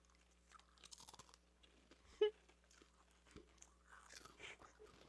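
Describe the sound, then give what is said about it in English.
Crisp crunching of small whale-shaped cheese crackers being chewed, with irregular bites and crackly mouth sounds, one sharper crunch standing out midway, no talking. “Do you want goldfish or do you want whales? Give me some whales.”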